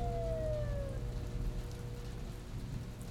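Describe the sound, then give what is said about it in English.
Steady storm rain patters throughout while a faint, distant emergency vehicle siren wail slides downward in pitch during the first second, then fades beneath the rainfall. “Just as he was hauling himself up from the thick brown mud, he heard a siren in the distance.”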